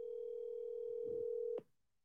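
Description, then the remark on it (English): The ringing tone of an outgoing phone call: a steady, mid-pitched tone hums unbroken for about a second and a half, then cuts off abruptly with a click, leaving near silence. No one speaks. “Call JR.”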